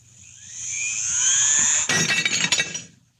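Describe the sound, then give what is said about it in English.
A shrill, rising electronic whine swells for a couple of seconds, then a glass on the edge of a table breaks in a sudden crash of shattering glass, its tinkling fragments scattering and fading quickly. No one speaks. “Watch closely what happens to that glass on the edge of the table. Watch. It's amazing. The glass was shattered.”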